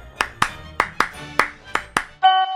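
Seven sharp hand claps in a quick, slightly uneven rhythm, used to operate a Clapper Extreme sound-activated switch for home electronic items, followed by a short electronic tone with a steady, buzzy pitch.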